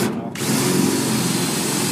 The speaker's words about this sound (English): is now drilling the lock. I kind of, I haven't heard a pop yet. That. I can see bits of metal flying out. Oh, here it goes.